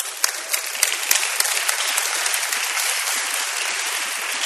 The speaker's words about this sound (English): They're going to come on stage. Why don't you give them a round of applause as they come on?